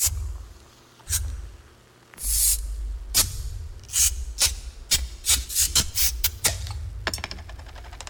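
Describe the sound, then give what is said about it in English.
A rapid series of Bud Light beer bottles being opened in a 30-second commercial, about a dozen sharp hissing pops of escaping fizz, some longer whooshes, following one another in quick irregular succession with no talking. “But this is a 30-second commercial, so here's some sound effects of bottles opening.”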